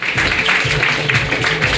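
A crowd applauds in a steady, dense wash of clapping that holds at an even, fairly loud level throughout, with a faint murmur of voices underneath.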